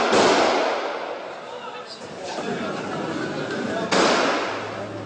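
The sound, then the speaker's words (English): Two sharp, reverberating gunshots, one at the start and another near the end, ring out inside a shopping mall in Nairobi, Kenya, over a steady murmur of agitated crowd voices. “Gunshots inside a shopping mall in the Kenyan capital, Nairobi.”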